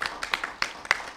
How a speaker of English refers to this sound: But please join me in a very brief round of applause for our guests, and thank them for being here.